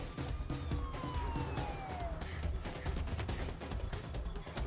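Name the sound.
police car siren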